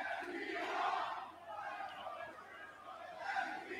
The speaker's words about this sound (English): I want you to listen to this crowd right now. And think about what the crowd sounds like now, what they would sound like by the end of this match.